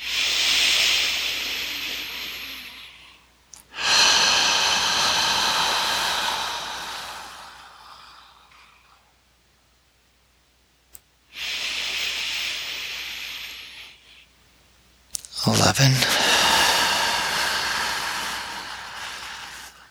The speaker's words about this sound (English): So let's begin our 12-fold lower belly breathing. 12.